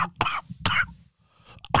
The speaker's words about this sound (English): I was at the Beverly Hills Hotel just coughing.